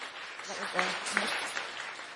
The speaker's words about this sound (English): He's made so much progress this year. So I wanted to give him a round of applause.